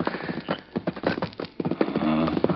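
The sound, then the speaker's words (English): Horses' hooves clip-clop in a steady, uneven rhythm of sharp knocks, fairly loud, as the horses are brought up, with a brief tonal snort-like sound near the end and no talking. “Bring up the horses”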